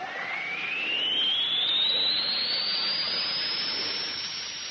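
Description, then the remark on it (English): Air rushes out of an airlock through an opened valve in a loud, steady hiss as the pressure drops to zero, with a thin whistling tone that climbs gradually in pitch throughout. No voices are heard. “Open the valve. Let the air out.”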